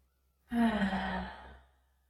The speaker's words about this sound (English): Inhaling and exhaling loudly.